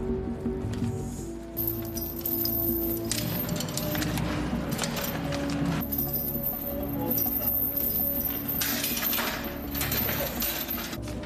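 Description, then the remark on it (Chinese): A metal security gate at the door of a flat clatters and rattles as it is pulled shut and locked with a lock, with repeated loud metallic clanks and scraping over a steady noisy background. “喂，你做咩啊？嚇，鎖我鐵閘，仲放埋 K 前添啊！”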